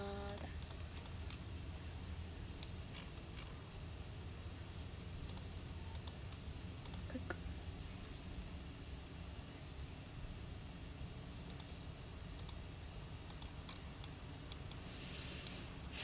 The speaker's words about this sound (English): So I'm just clicking away.